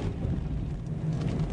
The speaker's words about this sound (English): The traffic is getting heavier, and it's not really helped by the fact that everybody has to slow down to move through the areas of roadworks.